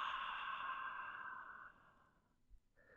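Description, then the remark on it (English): A long, breathy exhale through an open mouth during a guided breathing exercise, after an inhale through the nose; steady for about two seconds before trailing off, followed by a faint softer breath sound; no talking. “And then open mouth, exhale, let it go.”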